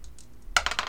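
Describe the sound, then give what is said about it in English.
Dice for an intelligence roll tumble and clatter across a hard surface in a quick burst of bright, rattling clicks, preceded by a few soft taps. No one speaks. “You wake up and let me have an intelligence roll.”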